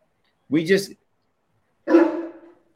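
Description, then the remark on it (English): A dog barks twice, two full, throaty woofs a little over a second apart, moderately loud, with quiet in between and no talking over them. “Gonna get heckled by a dog”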